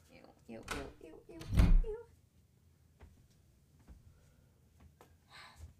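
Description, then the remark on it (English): A door is pulled open with a loud thump, preceded by a short squealing, creaky sound, then a few quieter clicks and rustles trail off. “You, Yeah, open the door and I'll get it off the knife.”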